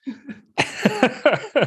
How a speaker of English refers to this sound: I'm going to apologize, guys. I think I've got a bit of a cold because I've got a cough and my nose is running a bit. So if you hear that on the recording.